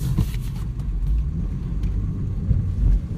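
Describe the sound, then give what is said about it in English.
Low, steady road rumble of a moving car, with other cars passing within an inch of it in brief whooshes toward the end; no one speaks. “I just have that many cars coming within an inch of my car.”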